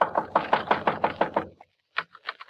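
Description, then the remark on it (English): A rapid, even series of about nine hollow knocks on a small wooden shed with a cheap padlock on the outside, big enough for half a dozen garbage cans, fairly loud. After a short silence, a brief voice follows. “Just in a hunch, I go over to the shed and knock.”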